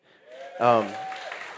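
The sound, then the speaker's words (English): Audience applause for the fathers at a church gathering on Father's Day rises suddenly and carries on as a steady, fairly soft patter of many hands, with a brief voiced cheer or call at the start. “Now, I understand that there are some dads who don't deserve that role, who don't deserve the round of applause, but there are so many amazing daddies in this room right now.”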